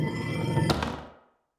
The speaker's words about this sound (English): And you see this guy go over to the security panel, punches in a number, and then puts his face really close, and then the door unlocks and swings open.